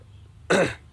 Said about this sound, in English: This hen just came up to try to see if she could eat my ash. She couldn't eat my ash.